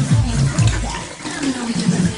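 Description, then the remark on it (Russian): Liquid pours steadily with a bubbly, fizzing wash as champagne fills glasses; voices talk intermittently over the pouring. “Наливайте. А я сейчас трубочки принесу.”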